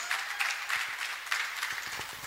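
An audience claps steadily for a guest speaker at an event streamed live on Zoom and Facebook, a dense crackle of many hands filling the room at a moderate level with no pauses and no voices.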